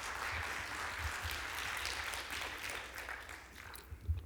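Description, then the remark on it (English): A crowd applauds steadily, a dense wash of many hands clapping at once, holding fairly even loudness for several seconds before thinning slightly near the end. “yeah, you can give him a great round of applause.”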